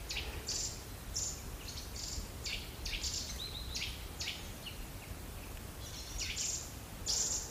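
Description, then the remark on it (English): Chaffinches, nuthatches and another bird sing from the treetops, with nuthatches on oak tree trunks, in a steady stream of bright, high chirps and short trills over a soft, constant background hiss, with no voices. “Chaffinches, not hatches, and a bird I don't recognise.”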